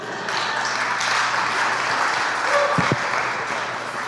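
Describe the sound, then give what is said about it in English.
A church audience claps their hands to welcome guest preacher Dr. Dan Doriani, a steady, dense burst of applause that holds at a fairly even loudness for about four seconds, with no voices standing out. “So let's receive him with in the church I grew up in, we would say with a loud and hearty praise the Lord, but you can clap your hands.”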